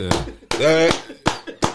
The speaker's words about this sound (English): Hold on. We gotta give a clap to that, man.